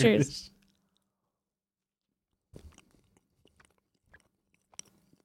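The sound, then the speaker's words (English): Quiet chewing with soft, irregular mouth clicks and crunches scattered over several seconds, after a brief loud burst at the start and a short pause of silence. “Sorry for the chewing, everyone.”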